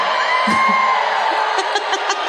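A crowd cheering and whooping loudly and steadily, with scattered shouts and some laughter mixed into the dense roar.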